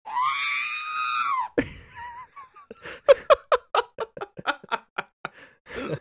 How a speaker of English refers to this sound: We do not own the rights to Star Wars. No, we do not. We do not. But that R2-D2 scream is so damn funny, dude.